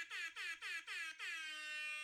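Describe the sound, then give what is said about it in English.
A loud air horn sounds in four quick staccato blasts, then holds one long, sustained blare to the end, brassy, with no voices. “It's been a hot minute since we've done a nice air horn on here.”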